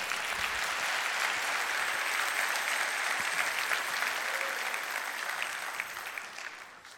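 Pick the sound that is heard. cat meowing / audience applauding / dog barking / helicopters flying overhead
audience applauding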